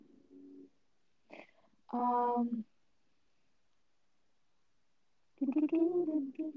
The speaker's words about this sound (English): Do I hear Pebble snoring in the background? Yeah, that's my little doggy snoring more in the background.